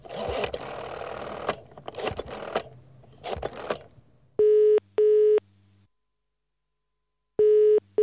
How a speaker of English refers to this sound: Why does it sound like I'm using a phone in the UK?